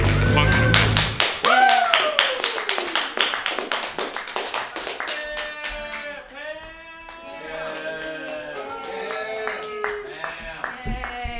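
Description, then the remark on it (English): An audience at a comedy show claps in a dense, steady patter that starts loud and eases slightly, while several voices whoop and call out over the applause. “Yay, clap for me.”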